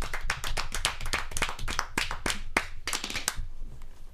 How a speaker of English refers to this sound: Let's get a round of applause for fast food. How about that? Fast food.